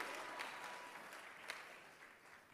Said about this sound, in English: Come on, scream and clap and give God your loudest praise.